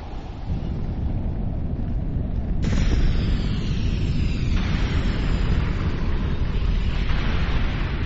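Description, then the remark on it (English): The Anak Krakatoa volcano erupts on its island with a deep, continuous roar, broken by a few sudden loud blasts that hurl rocks and lava and then settle back into the heavy rumbling. “Only 2 hours after the team pushed off from the island, Anak let rip, hurtling rocks and lava onto the area where we had stood.”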